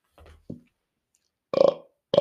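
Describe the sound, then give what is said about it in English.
A short, low, rumbling burp, quickly followed by a brief throaty catch and then two louder, harsher vocal bursts about half a second apart. “Oh, excuse me. That was gross. Terribly sorry.”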